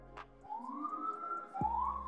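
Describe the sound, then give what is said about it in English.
An NYPD police siren wails in one long, steady rising-and-falling sweep, then sharply starts a new climb near the end, loud and clear over a low rumble. “Oh, fucking NYPD, bro.”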